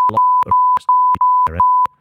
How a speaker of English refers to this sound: Which is probably illegal, so I'll probably beep that out.